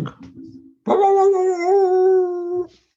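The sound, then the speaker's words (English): A person imitates a dog, giving a short gruff bark and then a long, steady, loud howl that holds for nearly two seconds before cutting off. “Let me hear you bark”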